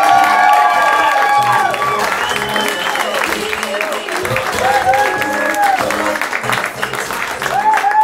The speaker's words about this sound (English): How about a round of applause for the idea of a storytelling show? That's good. Let's make it a little more exciting. And keep that applause going for our first storyteller